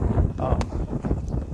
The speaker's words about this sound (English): Oh, it's getting windy. The wind's picking up, so you're going to get a windbreak.